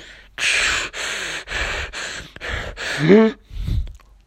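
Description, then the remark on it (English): Heavy, rasping breathing outside a door, about seven loud breaths in a steady rhythm, one turning into a brief voiced groan before a final softer exhale. “He heard breathing outside his door, and he listened.”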